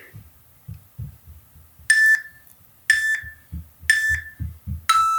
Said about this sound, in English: you'll hear a beep, and that means that the time is up